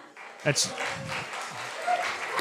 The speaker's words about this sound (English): Let's give a round of applause for Australia.